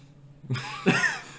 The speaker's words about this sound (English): Can you stop coughing? No, I can't.